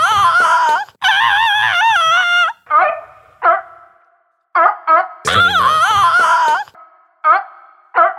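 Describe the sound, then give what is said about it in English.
A seal calls out in loud, wavering moans mixed with short, gruff barks, the long wailing cries rising and falling in pitch between brief pauses, with no one talking. “What sound does a seal make? What? I'm going to play that.”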